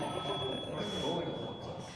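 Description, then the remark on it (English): A media manager's mobile phone, sitting on a table during a Cricket Australia press conference, rings with a steady, high-pitched electronic tone throughout, heard over a murmur and faint background voices. “was phoning the media manager who had his phone sitting on the table while they were doing the press conference”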